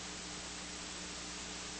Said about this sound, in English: Power on AM 870. Okay, right now it's 870. I'll turn it down because you don't want to hear static like I don't. And AM, we're really not going to get in here.